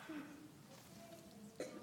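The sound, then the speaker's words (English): A brief, muffled cough sounds faintly, followed by a second short throaty burst near the end, with a low murmur of voice in the background. “I still catch there was a cough, sorry.”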